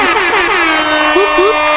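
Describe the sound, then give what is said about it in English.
An air horn sound effect played on Cairns FM radio blares in rapid repeated blasts with wavering, bending pitch, filling the whole short burst with no pause between honks. “Air horns.”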